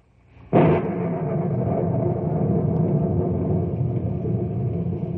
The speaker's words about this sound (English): Gigantic thunderheads are passing over the knotty pine country, and the monsters lash out with angry streaks of lightning. The air is muggy as the warm front battles against a cold front, trying to push it out of the way.